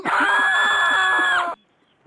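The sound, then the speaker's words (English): A single loud, sustained scream, played as a sound effect, lasts about a second and a half, high-pitched and steady, then cuts off abruptly into near silence. “Yeah, end the screams.”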